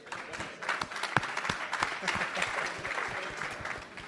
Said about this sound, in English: If we can just quickly give a big round of applause for our panelists here today.